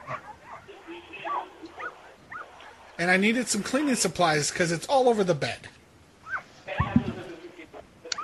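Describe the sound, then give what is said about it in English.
High, thin yips and whimpers from a dog and its newborn litter of about a dozen and a half puppies in a guest's room, coming in short bursts before and after a stretch of a man talking over them. “Oh, I was just letting the gentleman know I had my dog in my room, and the dog just gave birth to like a dozen and a half puppies.”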